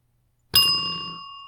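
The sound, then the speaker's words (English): A single bright bell ding, made by a person's voice imitating a bell, strikes suddenly after a moment of silence, its clear metallic tone ringing on and slowly fading. No one speaks. “Very good bell noise, Mum.”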